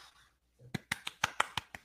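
A quick run of about seven hand claps in a steady, fast rhythm, each a sharp, bright smack, following a brief quiet pause and a faint low murmur.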